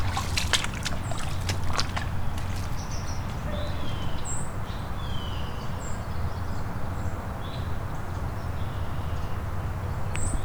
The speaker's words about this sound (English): White-throated sparrow right above me. Pretty annoyed. Those seep calls. Or white-throated in this case, but it's very similar to fox sparrow though.